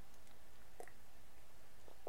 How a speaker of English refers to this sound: Let me have a little sip of my tea.